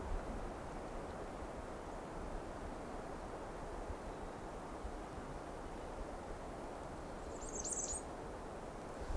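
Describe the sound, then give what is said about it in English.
A short burst of high, thin squeaky notes from a black-and-white warbler near the end, heard once over a constant roar of wind-like background noise. “Black and white warbler, I think.”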